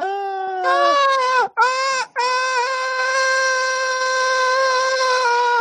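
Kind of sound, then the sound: human body sound, person screaming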